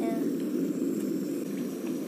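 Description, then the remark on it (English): A steady, low rumbling hiss of already warm water heating toward a boil, continuous, with a dense churning texture and no clear bubbling pops yet. “Should be warm, so it shouldn't take too long to boil.”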